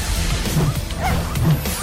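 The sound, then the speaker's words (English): A 12-month-old chihuahua named Milo, an entrant in the Perth Pup Cup, lets out a few short, sharp yappy barks over a noisy, cluttered background with some clattering. “This 12-month-old chihuahua may look cute and cuddly, but don't let those big eyes fool you.”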